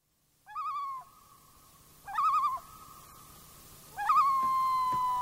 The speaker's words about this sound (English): In the mountain lakes of Glacier National Park, common loon calls echo across the crystal clear water.